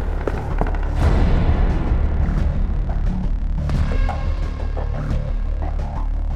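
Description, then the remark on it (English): Muffled gunshots crack repeatedly at irregular intervals over a heavy, continuous low rumble, booming rather than sharp. “What's that, gunshots?”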